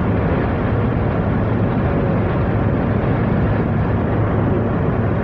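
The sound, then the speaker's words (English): A truck's heavy engine rumbles steadily and loudly, a constant low roar with no rise or fade over the few seconds, and no one speaking. “That fucking dude driving that truck.”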